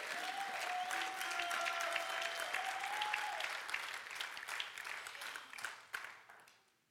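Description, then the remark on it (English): An audience claps for Jesus in a dense, sustained burst of applause that fills the room, with a faint tone underneath early on, then gradually thins and fades out. “Come on and give Jesus a clap off of this morning, amen?”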